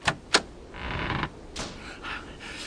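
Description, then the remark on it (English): A metropolitan police box materialises in a park on a deserted common on a snowy night: two sharp clicks, then a grinding, whirring mechanical surge followed by softer rising wheezes, moderately loud with no voices. “The snowflakes falling from the black night sky had eased, but now danced frantically as the form of a metropolitan police box materialised in the park.”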